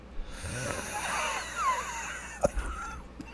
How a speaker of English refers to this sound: I also have, my nose is a little, banged out and I'm coughing. I have a super dry cough and I'm going to do this and let's see if you can hear it. All right. I don't know if you'll be able to hear it, but let's see.